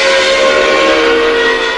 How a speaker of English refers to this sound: Something called Monster Yell.